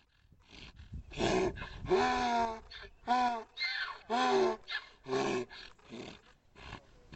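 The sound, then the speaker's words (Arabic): A donkey that was hit by a car cries out while dying at one o'clock at night, a series of harsh, wavering brays, loud rasping bursts with falling and rising pitch separated by short gasping pauses, with no talking. “ليدرك فورا بأن ذلك الصوت هو صوت الحمار الذي اصطدم به وهو يلفظ أنفاسه الأخيرة.”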